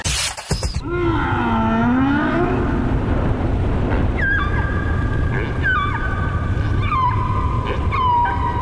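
Deep, mournful whale song from whales in the middle of the ocean, with long sliding moans and a repeating series of higher descending calls, heard alone over a low rumbling underwater background.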